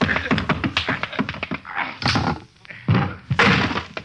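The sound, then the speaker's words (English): A flurry of heavy punches and dull thuds in quick, uneven succession, like a brief scuffle, ending with a few harder impacts as a man is knocked out. “I didn't want to knock you out.”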